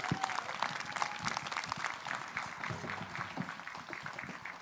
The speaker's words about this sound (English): And I told her, we are the most applauding church on the peninsula, on the West Coast. So can you give her a Northern California applause and welcome